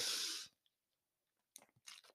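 Someone drinking water: a loud, noisy burst at the start, a short pause, then a run of wet gulping and slurping sounds with no talking.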